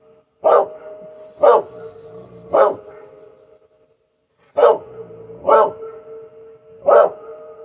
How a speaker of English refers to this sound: What's on earth are you barking at?